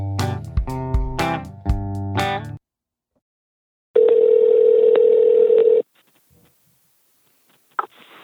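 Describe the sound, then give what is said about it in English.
A few bright electronic tones ring out in quick succession, then after a pause a steady, unbroken telephone dial tone hums for about two seconds before cutting off, followed by a faint click, at the start of a phone call recorded early in the morning. “I recorded the phone call with Nick really early in the morning”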